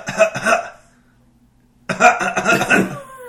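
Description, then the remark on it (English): A voice imitates a child's rhythmic coughing: two quick coughs, a short pause, then a longer run of rhythmic coughs in a steady beat, fairly loud. “It's like when we were at Chili's the other night and the kid kept coughing.”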